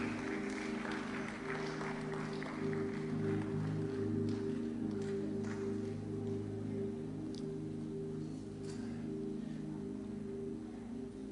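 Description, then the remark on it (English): A church audience at a morning service claps together in a steady, dense wash of applause, with a sustained low musical drone running underneath throughout. “Your clapping is not good.”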